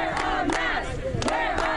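A crowd of several dozen students at a Broward school chanting together as they line a fence, many overlapping voices at a steady loud level with rhythmic shouted bursts and no pauses.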